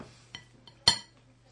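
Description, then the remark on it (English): A few sharp clinks of cutlery against plates as people at a table eat a gooey, truffle-like layered cake, quiet, with the last one the loudest and slightly ringing, over a low steady hum and no talking. “And hence you will hear not very much from the table of the clinking of cutlery.”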